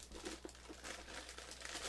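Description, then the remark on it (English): Paper bag crinkling in a steady run of dry, rustling bursts for about two seconds, fairly quiet, with a low constant hum underneath and no voices. “There's a paper bag right there too for that 40.”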